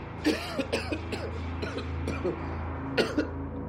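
A man coughs repeatedly in a string of short, harsh, throaty bursts, with a low steady rumble underneath throughout.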